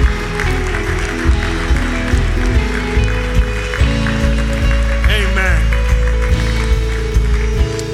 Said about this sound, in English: And everyone said, come on, would you give God a big hand clap of praise today?